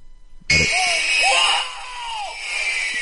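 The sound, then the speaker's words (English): In a film scene, a table saw chopping off a finger kicks in abruptly and cuts with a loud, steady, high-pitched whine for about two and a half seconds, while a wavering voice rises and falls beneath the noise. “Oh, that was the chopping of the that finger.”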